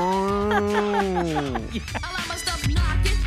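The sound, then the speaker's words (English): A long, low cow moo holds steady, then sags downward in pitch over about a second and a half. Brief, busy voices and noise follow, ending in a low rumble. “The Seattle cattle would be fantastic because every time they score, it could be like a cow mooing.”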